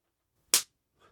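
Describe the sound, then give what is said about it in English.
One sharp hand clap, a loud, bright smack that cuts off quickly, followed a moment later by a faint, soft rustle. No one speaks. “That was a terrible clap”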